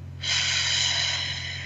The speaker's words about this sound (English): take a deep breath, breathing in through our nose. And actually breathe all the way down to your toes. See, in fact, how big you can make your belly. And then breathe out through your mouth, like through a straw. Take another deep breath. Beautiful.